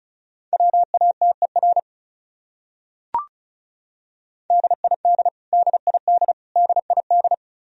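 Fast Morse code at about 35 words per minute sending common top-100 words, each repeated: a steady mid-pitched beep keyed into rapid short and long pulses, two bursts separated by a pause with a brief click.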